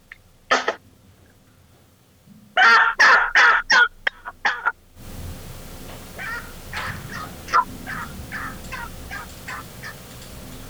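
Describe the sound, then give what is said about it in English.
A demonstration of a male turkey yelp, the same call as a hen's but from a bird 2.5 times the size: one note, then a loud run of six or so evenly spaced yelps, followed by a fainter series over a steady background hiss. “Again, it's the same call. It's just the fact that you have a male bird that's 2.5 times the size doing it.”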